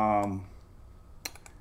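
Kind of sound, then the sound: household object, computer clicking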